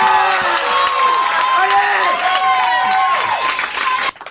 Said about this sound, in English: What was that applause? There was a giant applause thing in my ear. I have no idea.